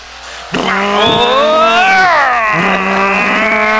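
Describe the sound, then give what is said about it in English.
A loud engine revs up after a brief quiet start, its tone climbing, then dropping and rising again before holding a steady, buzzing roar. “Rev those engines.”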